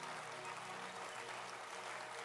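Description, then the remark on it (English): A church audience claps for the church's leaders during a service, a sustained, dense applause and steady wash of many hands with no individual claps standing out, holding an even level throughout. “Clap your hands for the leaders we have in the church.”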